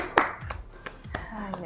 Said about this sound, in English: And everyone starts like clapping and applauding.